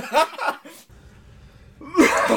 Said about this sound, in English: Oh, that's a great start. That's our intro. A real phlegmy cough. Nice. That was so hot. That wasn't even on purpose.